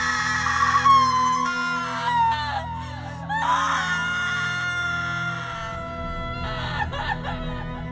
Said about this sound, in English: Children buried their faces in the skirts of their mothers and clasped hands over their ears as old Maigret's screams echoed through the town